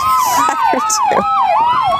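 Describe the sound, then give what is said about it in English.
A police cruiser's siren wails loudly and continuously in a video of an attack on the cruiser, its pitch sweeping rapidly up and down in a quick yelping pattern, roughly four cycles in two seconds. “Now look at this cop car actually pauses.”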